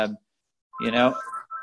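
A church phone rings with an incoming call: the ringtone chimes in with a short burst, goes briefly quiet, then returns as a fuller melodic ring that trails into steady electronic tones, moderately loud.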